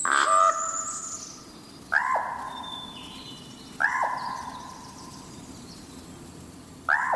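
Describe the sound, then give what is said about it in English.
A common raven gives four harsh, guttural croaks spaced a couple of seconds apart, each loud with a quick downward inflection, over a faint outdoor background and no talking, recorded by Jeffrey Keller in Oregon's Mount Hood National Forest. “In Oregon's Mount Hood National Forest, far from Edgar Allan Poe's birthplace in Boston, Jeffrey Keller recorded this common raven's call of Nevermore.”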